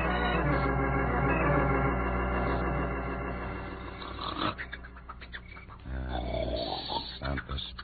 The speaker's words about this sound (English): Mother of me, they can hear that snore a mile away.